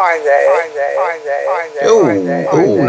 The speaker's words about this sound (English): Oh no, oh dear, you have a terrible echo. Hello, oh dear, it's not going to work, is it? No, I don't know where that echo is coming from, but let me see if I can figure it out. It's not our end.